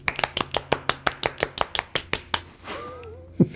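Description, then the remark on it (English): A golf clap for a TV show reaching 300 episodes: about fifteen light, evenly spaced hand claps in a quick steady rhythm lasting a couple of seconds, followed by a brief wavering vocal sound and a couple of soft taps. “so well done, Seth. Golf clap.”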